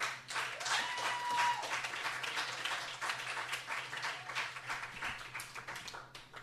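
An audience applauds steadily, a dense wash of many hands clapping at fairly high volume that thins slightly toward the end, with a low steady hum beneath it.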